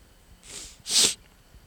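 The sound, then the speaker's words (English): Two quick breathy nasal sniffles, a softer hissing intake followed by a sharper, louder one, each lasting well under half a second against a quiet background with no talking. “Why'd you just do that? What? The sniffle thing.”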